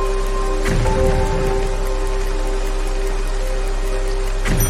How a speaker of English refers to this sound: So where should they hide from the storm? Remember, there's thunder and the lightning.